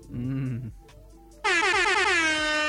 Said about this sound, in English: I heard like the last like 9 episodes started off with air horns. So, fuck it. Keep the tradition going.